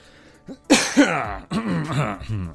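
Two sharp coughs in quick succession, followed by a longer raspy, throaty rumble as someone clears their throat, with no talking.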